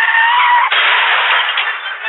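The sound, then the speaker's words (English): A car smashes into a police cruiser waiting in the bushes at a dangerous curve. A harsh, sustained roar of crunching metal and shattering glass is cut partway through by a sharp jolt, and the clatter continues steadily for about two seconds. “Glass shatters as he hits the cruiser.”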